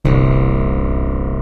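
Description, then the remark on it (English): A loud, steady buzzing rattle of a playing card flapping against the spokes of a Chopper bicycle, so rapid it blurs into a harsh, even drone that holds for about a second and a half. “You've just put a playing card in the spokes.”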